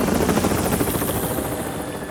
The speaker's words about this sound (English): Down in the mine, Thomas could hear Harold the helicopter getting closer.